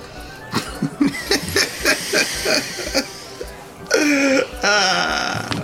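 A woman gives a loud, drawn-out burp that rumbles after a stretch of choppy laughter and chuckling, followed by a second voiced, belch-like sound.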